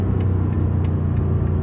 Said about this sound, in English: This car is pretty dope. I got a car behind me that is wanting to get by, so I'm going to pull off.